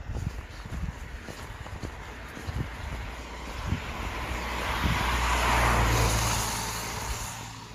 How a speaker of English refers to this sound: And despite me saying this was a quiet country lane, ever since I said that, it's been a non-stop succession of cars.